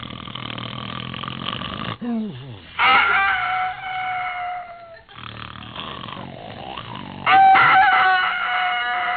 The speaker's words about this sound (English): What's the matter? The rooster is crowing.